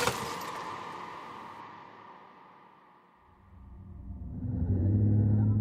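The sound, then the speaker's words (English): A loud car crash bursts in as a car slams into something, with harsh, ringing metal-on-metal screeching that slowly fades, then a deep, heavy rumble swells, with no voices. “I hear the sounds of metal on metal, screeching as my car slams into something.”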